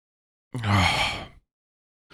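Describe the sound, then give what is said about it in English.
A single drawn-out yawn, starting with a low voiced groan and opening into a breathy exhale that lasts just under a second, with silence around it. “And I haven't been yawning, but as soon as I put the mic on, I start fucking yawning.”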